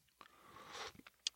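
A soft, breathy slurp of someone sipping coffee, with a few small mouth clicks and a sharp little click at the end. Quiet, with no talking.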